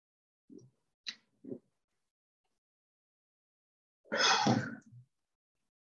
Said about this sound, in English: I'm taking a sip of Mountain Dew. It's medicinal in this case.